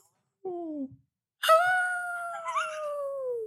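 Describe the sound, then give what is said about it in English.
A person imitates a howl: a short falling note, a brief pause, then a longer, louder wavering howl that slowly slides downward. “And the howling?”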